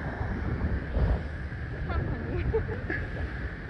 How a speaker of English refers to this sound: Oh! And it happened again. This is live. It doesn't get no better than this. The ocean got us again.